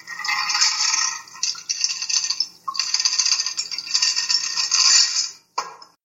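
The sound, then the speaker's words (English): Franklin Roosevelt's presidential martini strained through a Hawthorn strainer into a glass: a steady, bright splashing pour with ice clinking against metal, a short gap near the end, then a final brief trickle. “Cool liquid through the Hawthorn strainer.”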